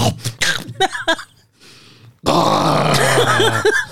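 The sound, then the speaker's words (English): A voice mimics a sleep apnea choking breath: a few grunting, strained noises, a hush of faint breathing, then a sudden loud, ragged gasp and snort. “You ever heard a nigga stop breathing with sleep apnea?”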